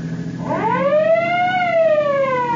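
A police siren wails, its pitch sweeping up then slowly falling in one long rising-and-falling cycle, loud and close, over a low engine hum with no talking.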